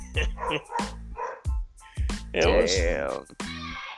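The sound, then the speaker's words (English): Several dogs bark and yip in sharp bursts while a person yells at them; a drawn-out whining or howling cry rises in the middle before more barking. “Yeah, that's someone yelling at the dogs.”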